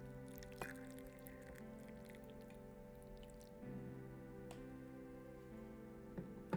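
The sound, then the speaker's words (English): Hot water is poured steadily over tea leaves, a soft continuous trickle with a few faint drips and light clinks, quiet, with no talking. “I'm going to pour this water into the tea.”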